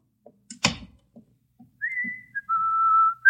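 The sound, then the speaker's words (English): Miss Brooks whistles a simple tune of a few long, held notes that step up and down in pitch, in a hall right outside an office. The whistling is clear and fairly loud, preceded by a sharp bang and soft thumps. “Do you think you should whistle so loudly, Miss Brooks?”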